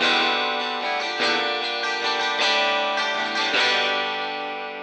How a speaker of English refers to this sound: Double humbucker. Both out of phase. For whatever reason, I feel like the 12 string sounds more reasonable. This actually sounds nice.